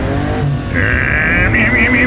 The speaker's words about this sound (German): Auf jeden Fall haben sie den falschen Wagen für diese Verfolgungsjagd. Die Avos, keine Chance mehr, uns einzuholen.